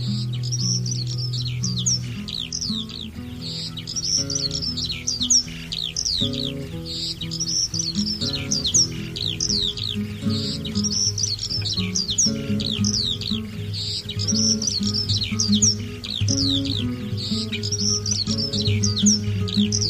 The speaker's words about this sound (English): Including bird song in the background,